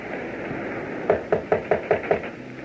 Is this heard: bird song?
no